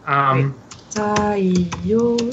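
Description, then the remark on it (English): Rapid, irregular keyboard clacks, fairly loud, as someone pounds furiously on a computer keyboard while a voice hums or murmurs over the keystrokes. “That's you pounding furiously on your keyboard.”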